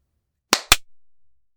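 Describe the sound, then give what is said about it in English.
Two sharp hand claps in quick succession, loud and crisp, each followed by a short ringing tail that fades out, with silence before and after. “How'd you feel about that clap?”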